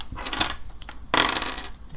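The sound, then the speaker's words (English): Dice rattle and tumble across a hard tabletop for awareness rolls, a burst of sharp clicks and clatters over about two seconds, with no voices. “You give me awareness rolls.”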